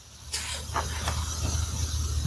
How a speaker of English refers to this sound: Oh, there's a cat. Okay. Cats are making noise.